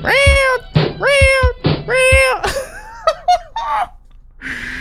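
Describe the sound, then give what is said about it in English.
Three loud, drawn-out cat meows in quick succession, then a cluster of shorter, wavering yowls and squeaky cries. The sounds are prominent, with brief gaps between them. “It's like a cat jumped onto the lid of a trash can, circa 1950-something.”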